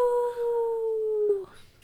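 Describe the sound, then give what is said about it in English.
A person's voice imitates a howl: one long, steady note sliding gently downward before breaking off abruptly, with a brief rustle afterward. “I think it's more like a... That's a howl.”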